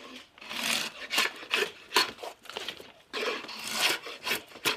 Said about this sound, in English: I'm taking the bark off of the handle on what you call a spoke shave.